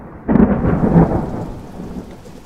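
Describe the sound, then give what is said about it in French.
A loud thunderclap bursts in and rumbles away over steady heavy rain and wind, a powerful storm at night around 11 pm with lightning filling the sky, no voices present. “Vers 23h, la pluie, le vent et les éclairs saturent le ciel.”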